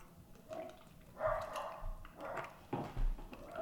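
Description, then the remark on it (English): Several neighbors' dogs bark outside, repeated sharp yaps in irregular bursts, somewhat muffled. “Sorry about those, the dogs out there.”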